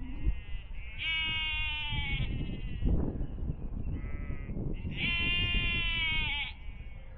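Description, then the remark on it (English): Young lambs bleat repeatedly in a field beside a steep path, two long wavering high-pitched calls standing out loudly over a steady outdoor background, with fainter bleats in between. “Sound of young lambs in a field off to my right hand side.”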